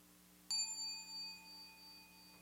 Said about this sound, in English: In me, the ocean of awareness, a little wave, a sound of the bell, arises, plays around for a while, diminishes, fades away.